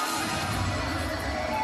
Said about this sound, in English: Listen to the eruption. The eruption of this crowd here at the Action Building in Canton, Georgia. This place just went ballistic.